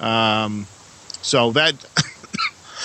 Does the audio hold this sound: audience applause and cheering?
no